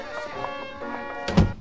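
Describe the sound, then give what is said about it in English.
A door shuts with one dull, solid thunk near the end, following a stretch of steady humming tones with a few soft bumps. “Come on, through this door.”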